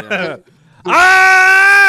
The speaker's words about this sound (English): I just got to yell into the mic.